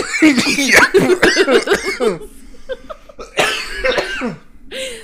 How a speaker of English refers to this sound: My cat's looking at me like, can you fucking stop coughing, please, you cunt?